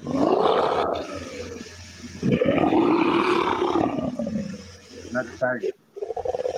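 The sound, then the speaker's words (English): A person growls out two long, loud lion-like roars in imitation, each rising and falling, followed by a few short breathy bursts. “Not the tiger. No, lion. No, not the lion.”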